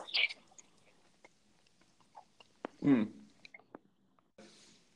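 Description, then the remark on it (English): Wet chewing of chimichangas with irregular smacks and crunchy clicks, one louder squelchy bite midway, and a soft breathy rustle near the end; no talking. “I'm just chewing chimichangas.”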